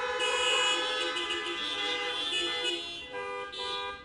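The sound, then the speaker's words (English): A dense chorus of car horns, honked by people in their parked cars at a church gathering on a count of three, blares together continuously for several seconds, overlapping tones forming a loud, sustained honking wall that wavers slightly near the end, with no talking. “On the count of three, would you all please honk your horns for Bob?”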